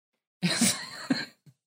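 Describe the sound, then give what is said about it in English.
One loud sneeze: a sharp voiced burst that trails into a breathy, hissing rush lasting about a second, then a brief soft sniff or exhale. “God bless you, sir. Thank you, sir. Oh, my God. My nose...”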